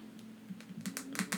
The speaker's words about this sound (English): Dude, that looks so weird. You're like fucking typing and like. You're typing on an iPod right now.